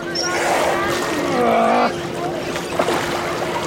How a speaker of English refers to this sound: Soon, more volunteers join them, and together they try to move number 571 out to sea. They squat down beside this 18-foot mammal and grab it under its front fins. They grunt as they try to move the whale, which weighs about a ton, through the water.